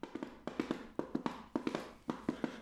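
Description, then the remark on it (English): Hoofbeats of a galloping horse: crisp, hollow clops in quick groups of three, repeating in a steady rolling rhythm at moderate loudness, with no voices. “Wait, is that hoofbeats that I hear?”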